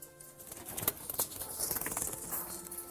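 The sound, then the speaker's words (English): Dual-purpose chickens, kept as egg layers and meat birds, shuffle and flap their wings inside a 50-meter electric net fence enclosure with a mobile chicken house. A busy patter of soft rustles and a few sharper flutters sits over a low outdoor background, with no talking. “These are dual-purpose birds. They're good egg layers and pretty good meat birds too.”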